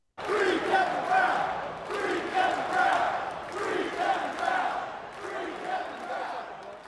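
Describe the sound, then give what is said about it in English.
A huge crowd of baseball fans in Baltimore chants the short phrase "Free Kevin Brown" in unison, repeating it in a steady rhythm, loud and echoing, with a constant roar of voices. “Also a tip of the cap to the fans in Baltimore who last night serenaded the crowd with this.”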